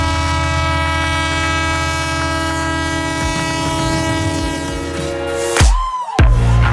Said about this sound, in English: This train keeps coming. It's the Investopedia Express.